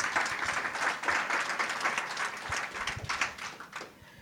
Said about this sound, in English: So if you would give them a round of applause as they make their way up here.